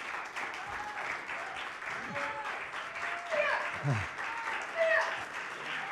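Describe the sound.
Steady applause from an audience encouraging a man about to break a board in a demonstration, a dense continuous patter of many hands clapping at moderate loudness, with brief cheers and whistles rising over it and faint voices mixed in.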